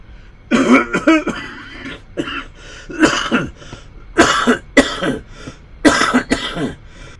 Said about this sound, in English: Are you all right, mister? I just had to clear my throat a little bit.